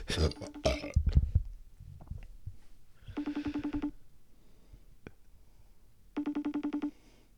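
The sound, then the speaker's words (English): A FaceTime call rings out from a phone resting on a microphone, in two short bursts of rapid, warbling tones with a pause between. Clear, it follows a brief noisy rumble at the start. “I have my phone sitting on a microphone right now.”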